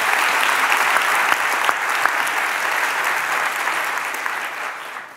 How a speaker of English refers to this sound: They really went above and beyond in making tonight happen. There's a lot of work that goes on behind the scenes, so maybe a quick round of applause for everyone at the Y who made tonight possible.